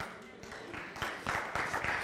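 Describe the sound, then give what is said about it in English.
An audience breaks into scattered clapping in response to a speaker's point about reading the scriptures, quickly thickening into steady applause, growing louder over about two seconds with no voices on top. “Okay, now, why are you clapping for that and you didn't clap for the other stuff?”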